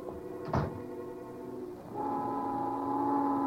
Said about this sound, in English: Just then, the noon whistle blew somewhere in New York.